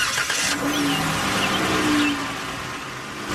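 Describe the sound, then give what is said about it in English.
A car's combustion engine cranks over with a brief starter whirr, catches, and revs up into a steady rumble, with no voices present. “We're going to look at a vehicle that has no combustion engine like that to crank up.”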